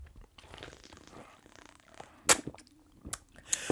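Quiet sipping of water from a cup, with soft slurps and swallows followed by a few sharp clicks as the cup is handled and set down. No one speaks.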